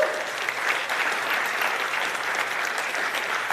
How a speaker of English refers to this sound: Come on, clap for him one more time.